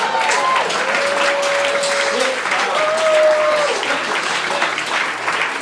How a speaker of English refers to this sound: Now, if I could get a round of applause, please.